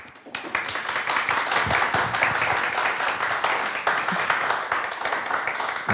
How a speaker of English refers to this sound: I love the applause. It's so good.